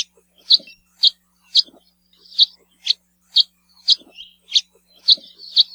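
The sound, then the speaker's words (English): House finch calls: a steady series of about ten short, nasal cheeps, evenly spaced roughly twice a second, clear with nothing else going on. “House finch calls, on the other hand, are a rather nasally cheep and are given by both males and females when they're foraging to let each other know where they are.”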